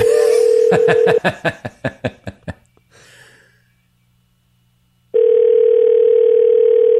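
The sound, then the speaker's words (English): A steady telephone dial tone, then a quick run of about a dozen evenly spaced dialing pulses fading out, a short hiss of static, and a loud steady tone returning to the end, as radio station Energy 106 phones a listener. “… calling from Energy 106.”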